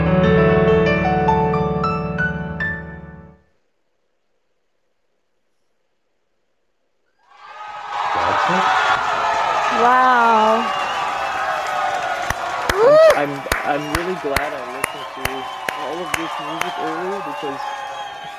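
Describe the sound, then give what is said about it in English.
A brief stretch of music ends, then after a pause a crowd bursts into loud, sustained applause and cheering, with whoops rising over the dense clapping and a few sharp claps standing out. “No, it's just was saying, hard to hear with the claps.”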